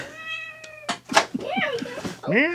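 A cat meows several times: a long, drawn-out whine, then a few shorter rising-and-falling cries, broken by brief noisy bursts.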